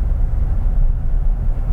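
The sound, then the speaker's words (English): A gas pickup truck engine drones steadily under load as it labors uphill after downshifting, holding about 3,000 to 3,100 RPM, a thick, constant low rumble with no voices. “Pretty typical for gas, for how that feeling is on a gas truck. I mean, you can hear this thing working for it.”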